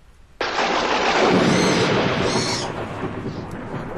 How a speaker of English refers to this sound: That storm's getting worse.